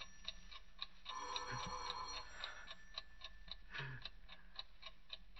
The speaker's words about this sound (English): Tick-tock. 7 minutes to 3. In 7 minutes, the alarm goes off. 7 minutes to 3, the alarm rings for me.